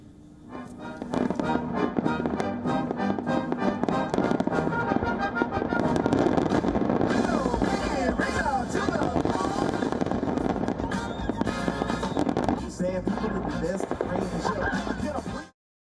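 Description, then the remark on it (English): Fireworks crackle and burst continuously for the 4th of July in America, with rapid popping layered over a steady, dense roar that stays loud for most of the stretch before cutting off abruptly. “Every year, 4th of July is celebrated with picnics, feasts, and fireworks, and this year is no different.”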